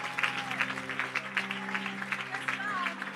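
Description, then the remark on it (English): An audience claps steadily throughout, a dense, continuous patter of many hands at a moderate level, with voices and a few cheers mixed into the applause. “So come on, keep clapping.”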